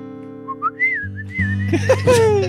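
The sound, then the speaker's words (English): Someone whistles bird-like calls: short rising chirps, then a warbling high trill that grows busier and louder toward the end, over a steady low droning tone. “Yes! You got the birds.”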